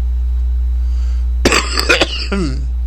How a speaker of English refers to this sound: Sorry about my coughing.